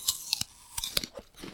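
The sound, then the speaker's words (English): Crisp crunching as someone bites into and chews a crunchy apple, a few sharp snaps followed by softer chewing, with no talking. “All right, I'm taking a bite.”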